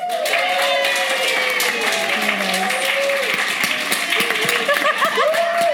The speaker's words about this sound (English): Don't turn it into like a sarcastic clap at me. You're like, that was so aggressive.